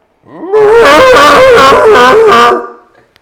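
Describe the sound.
A voice imitates the anguished scream of pain and agony of a character whose chest gem has been cracked in a game: one loud, sustained, wavering cry lasting about two seconds with a rough, strained tone, rising in and trailing off into silence.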